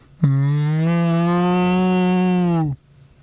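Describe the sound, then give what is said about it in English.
A person imitates a cow's moo with one long, loud, steady bellow lasting over two seconds, then it cuts off into near silence. “That was the closest I could come to a cow.”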